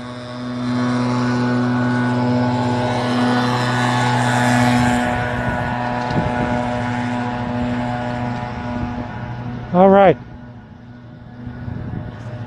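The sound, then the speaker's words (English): A leaf blower drones steadily for the whole stretch, its buzzing engine tone holding level, then easing slightly, heard on a morning bike ride to work along the parkway in Mid-City, New Orleans, in February 2018. A person speaks briefly over it near the end, voice muffled by a bandana. “You can hear my nemesis, the leaf blower there.”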